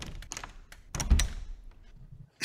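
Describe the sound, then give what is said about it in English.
A window locked from the inside is tried: a few quick rattling clicks and knocks, then a heavy thunk as the frame holds fast, with faint handling noise trailing off before another knock. “The window's locked from the inside as well.”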